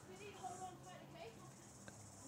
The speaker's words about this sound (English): I'm sort of listening more to the cicada.